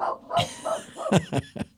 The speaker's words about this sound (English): and yes, even on the weekends, I come down here with my little dog, Echo. She is a small black and white Sheltie. Yeah, she's the prettiest little dog. She barks a lot. I'll show you.